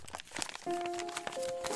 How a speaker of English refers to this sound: It opens the lock, and you see inside 3 pieces of paper. I'll pull them out.